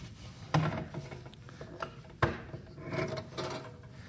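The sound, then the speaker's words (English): A hammer is handled against a wooden surface, with two sharp knocks separated by scraping and rubbing sounds as the tool shifts and slides on the wood. “I have a hammer here, okay?”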